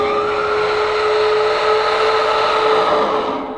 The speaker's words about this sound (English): And David Arquette's like, well, if that's the wind, it learned how to play an instrument. It's like a deep guttural like horn whistle.